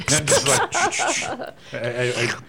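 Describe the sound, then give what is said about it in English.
A voice makes a wet, sucking slurp imitating the vacuum seal on vacuum-packed bone-in ribeye steaks, with voiced, wordless mouth noises before it; the final drawn-out slurp is steady and fairly loud. “She's like, it was a vacuum seal. I thought it deserved a sound effect.”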